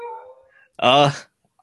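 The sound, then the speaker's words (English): A dog lets out a short, whiny whimper, then one sharp, loud bark, followed by quiet. “That's my dog barking in the background.”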